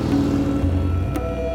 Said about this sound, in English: But the traffic is really heavy and I can't really get from one side of the street to the other.